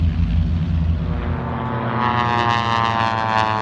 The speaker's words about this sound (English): Very quick. Okay, right. Very fast, agile aircraft. Yeah. Those are racing aircraft.